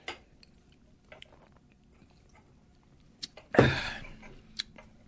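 sipping beer

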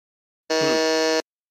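quiz buzzer

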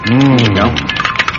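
keys jangling

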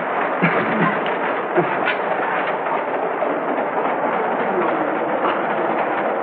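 moving passenger train

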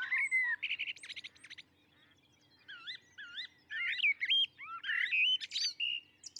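common blackbird singing

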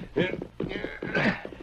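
horse hooves clip-clopping away

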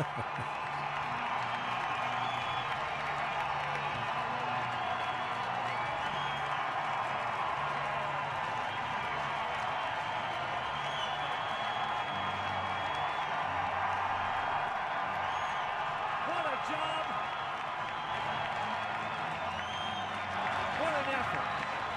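stadium crowd cheering

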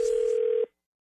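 telephone dial tone

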